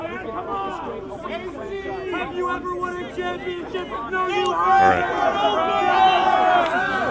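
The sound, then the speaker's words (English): Crowd chatter from a protest rally outside the Staples Center in Los Angeles calling to get rid of Rob Pelinka, with a sign reading "Pelinka must go": many voices talking over one another in a steady, dense babble that swells louder about two-thirds of the way through. “live from outside the Staples Center, where, would you believe it, a rally has actually broken out to get rid of Rob Pelinka.”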